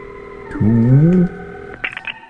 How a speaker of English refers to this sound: Well, I'll turn the rotary dial for you, if that'll you be like.